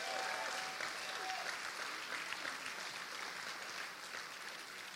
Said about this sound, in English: Give these guys a hand. We're going to be clapping a lot today, you guys.